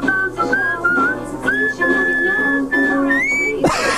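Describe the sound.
A man whistles a melodic tune, with clear sustained notes and gliding pitch changes over a few seconds, ending in a brief burst of breathy noise.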